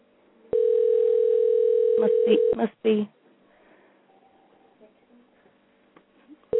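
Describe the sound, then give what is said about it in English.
A steady telephone dial tone hums loudly for about two seconds after a call is cut off, then breaks off amid clicks and handset fumbling, followed by a quiet line and a few words of speech. “I wonder if I've just cut somebody off.”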